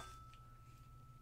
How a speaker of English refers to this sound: So, again, with your eyes closed, I'm going to be hitting this tuning fork. It sounds like this.